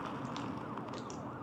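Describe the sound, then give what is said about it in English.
Approaching sirens wail with rising and falling pitch sweeps, blended into a dense, rough wash of background noise at a steady, fairly loud level. No one speaks. “She backed up towards the gate, hearing the sound of sirens approaching.”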